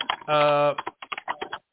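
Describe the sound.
Quick, irregular clatter of keys being typed on a computer keyboard, close and fairly loud, with a short held voice tone near the start.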